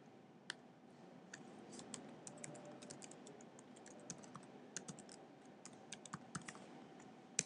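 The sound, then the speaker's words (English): Steady, irregular typing on a computer keyboard into an app's pop-up window: quick, crisp key clicks in uneven bursts over a low background hum, fairly quiet, with no voices. “It doesn't like the idea of you typing.”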